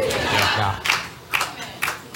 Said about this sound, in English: Oh, look at the way you are clapping. Jesus. Look at the way you are clapping.